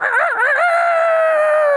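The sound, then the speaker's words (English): A single loud rooster crow, alone, opening with a wavering, warbling burst before stretching into a long, steady drawn-out note that fades slightly at the end. “It's the rooster booster.”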